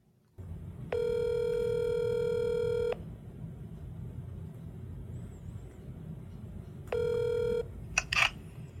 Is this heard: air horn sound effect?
no